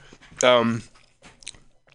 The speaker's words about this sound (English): Eating sushi, that was important. Chewing on the air. They say it shouldn't be done. I wonder why.